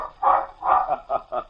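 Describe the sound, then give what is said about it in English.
A black and white water spaniel with a plumed tail rushes off a beach, barking four times in quick succession, two longer barks followed by two shorter, sharper ones, moderately loud with no talking. “Black and white water spaniel roaming in the brush suddenly springs out on the sand and, plumed tail aloft, rushes off the beach, barking.”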